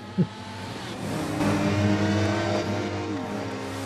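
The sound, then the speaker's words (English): A police motorbike's engine revs hard and climbs in pitch as it accelerates away, loud at first, with a brief sharp knock near the start and no voices. “I'm commandeering your bike. Get off!”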